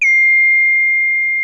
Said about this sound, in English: And man, let me tell you, that's loud when your phone beeps when this thing's connected, isn't it? Oh, man. That rang my bell right there.